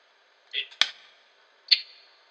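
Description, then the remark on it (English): A crisp, sharp hand clap snaps out with a quick decay, followed by another bright slap of similar sharpness about a second later, with a brief voiced sound just before. “That was a clap. Just like that.”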